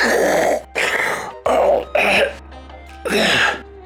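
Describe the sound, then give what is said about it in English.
A person imitates Darth Vader's heavy, rasping mechanical breathing: five loud, gasping breaths in a steady rhythm, each a harsh noisy rush separated by brief pauses, with no speech. “No, it's terrifying when he's breathing on you. He's like gasping for like...”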